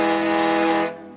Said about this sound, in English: Diesel engines and steam engines are a little different from each other in the way they work. They sound different too. Steam engines have whistles that sound like this. And diesels have horns that toot like this.